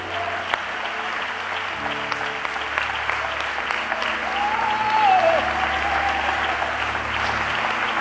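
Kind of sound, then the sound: crowd, audience applauding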